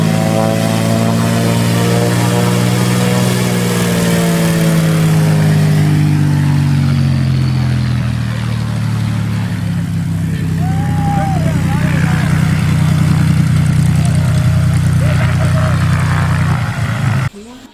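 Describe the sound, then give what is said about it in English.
A small propeller airplane used for flights in the Gulf Province drones loudly and steadily, its pitch shifting slightly as the throttle changes, running continuously before cutting off abruptly at the end. “We've been able to use this airplane as a tool to complement our work in the Gulf Province.”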